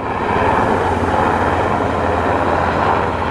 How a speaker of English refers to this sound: Hear the helicopter? Let's let it go by. Oh, there it is, right over my head. Helicopter, helicopter.